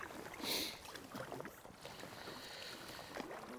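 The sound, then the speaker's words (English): Water sloshing and splashing in uneven kayak paddle strokes while paddling across the mouth of Calgary Bay from the Treshnish headland towards Kalia headland, along the northwest coastline of the Isle of Mull, with a brighter splash early on and a steady wash of wind and water behind. “I'm paddling across the mouth of Calgary Bay from the Treshnish headland towards Kalia headland, along the northwest coastline of the Isle of Mull.”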